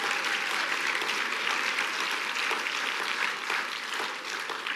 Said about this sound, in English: Clap your hands if you believe that today.